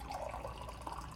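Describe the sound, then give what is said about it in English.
A steady stream of water pours from a water cooler in a Brooklyn factory as someone takes a drink, a soft continuous gurgling rush lasting about a second with no voices. “the company president paused for a refreshing sip from the water cooler.”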